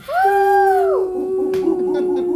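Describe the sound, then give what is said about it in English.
A lone voice imitates a cheering crowd with a loud, sustained high "woooo" that holds steady, then slides down in pitch and trails off into a lower, wavering hoot. “And the crowd goes wild.”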